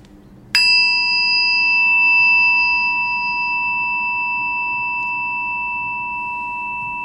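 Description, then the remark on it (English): A single meditation chime is struck once and rings out clearly, its bright tone sustaining and slowly fading over several seconds against a quiet background with no talking. “Allowing the chime to call you back to an awareness of where you are, right here, right now.”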